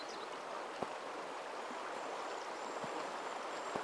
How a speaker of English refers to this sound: Feel how the river modifies its flow and increases and decreases its intensity. Be still. Although the rhythm of the river changes, the growing intensity of the river doesn't affect you.